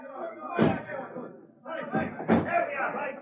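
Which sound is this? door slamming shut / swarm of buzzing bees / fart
door slamming shut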